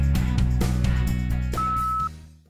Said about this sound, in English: Now it's your turn to speak at the beep.